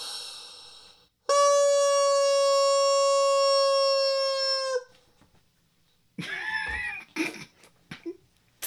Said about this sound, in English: Oh, the world's largest rubber chicken. Hear it roar!